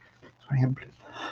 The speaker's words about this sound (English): got a bit of a cough, haven't I?